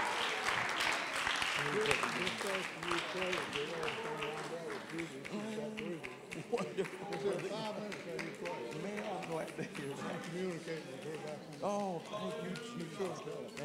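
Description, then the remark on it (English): An audience claps steadily to give praise to the Lord, a dense, continuous patter of hands, with raised voices calling and talking over the applause throughout. “Come on, let's clap our hands unto him and give him praise.”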